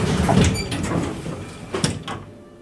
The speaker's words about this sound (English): The elevator goes up, and then at level 3, the doors open.